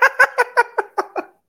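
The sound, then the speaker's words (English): A dog cries in another room in a quick run of about seven short, whimpering yelps, evenly spaced and tapering slightly in strength, with no talking around them. “Oh my god, my dog funny. Just cried. I heard him in the other room.”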